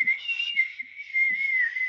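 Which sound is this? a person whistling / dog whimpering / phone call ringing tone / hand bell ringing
a person whistling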